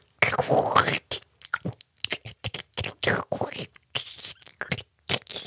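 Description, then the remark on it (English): Someone imitates loud, wet slurping and kissing noises with their mouth, a quick series of smacking, sucking bursts and short pauses. “And they're having a conversation in between the loud slurping, sucking noises.”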